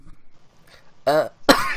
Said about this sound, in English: sorry, coughing.